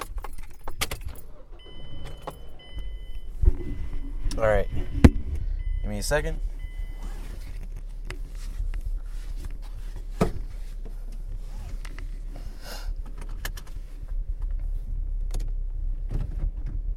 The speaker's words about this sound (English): let's get this car started